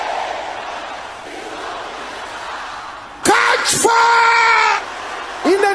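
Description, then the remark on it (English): A large crowd shouts a prayer together in a dense, roaring wash, then a single voice lets out a long, loud yell over it, followed by another brief shout. “Can I hear you shouting this loud?”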